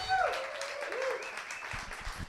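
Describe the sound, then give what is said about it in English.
A comedy show audience applauding the comedians steadily, a dense wash of clapping with a few whistles and cheers cutting through near the start. “Give it up for Doug right now. One last time. Look, everybody give it up for all the comics you've heard tonight.”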